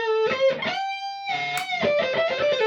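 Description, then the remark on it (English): Electric guitar played through a compressor pedal with its controls set to roughly 12 o'clock: bright, sustained notes with rich harmonics, a held tone ringing evenly between quick strummed bursts, fairly loud and steady in level, with no talking. “Then it's got the compressor. I tend to have everything set to roughly 12 o'clock.”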